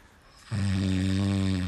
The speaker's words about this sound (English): Wow. That's nice. That's strong. Oh my God, no. That's nice, yeah. That's a nice snore. At least it's got a rhythm to it. It's got a very nice rhythm.